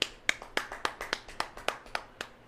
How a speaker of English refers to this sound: Damn, what a fight. Yeah, I got to clap for that.